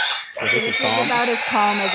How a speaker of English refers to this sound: The first pig is always the calmest because it doesn't know what's coming. So as the day goes on and we go through more pigs, they scream more loudly because they get agitated from the previous pig.